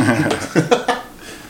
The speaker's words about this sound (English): Make me cough right now.